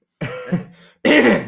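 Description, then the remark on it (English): A voice imitates a father's harsh, phlegmy smoker's throat clearing in two rough bursts: a gravelly rasp that trails off, then a louder, scratchier hack after a brief pause, loud. “It was his dad clearing his throat from the smoker's gun.”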